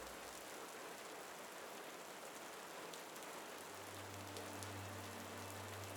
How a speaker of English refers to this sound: As this light rain continues, we are ending the episode here.